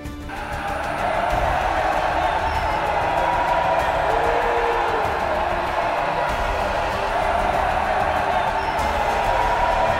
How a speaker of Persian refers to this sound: از فریاد سربازها تمام در و دیوار قلعه به لرزش افتاد. منم کنار اونا فریاد میکشیدم.